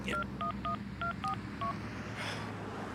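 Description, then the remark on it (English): A man dials his cell phone: six quick dual-tone keypad beeps in an uneven rhythm, clear over a low background hum, followed by a brief soft rustle. “Let's see, where's my cell phone here? Here we go.”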